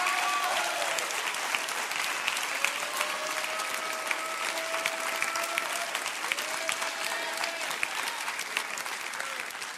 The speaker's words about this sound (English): Come on, somebody. Clap your hands big time right now.